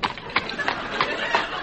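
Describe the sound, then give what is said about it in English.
Horse hooves gallop in a steady rhythm, a handful of distinct thudding beats, set against a continuous hissy background; the horse is named Black Beauty. “I am none other than Dick Turpentine, the notorious highwayman, and this is my famous horse, Black Beauty.”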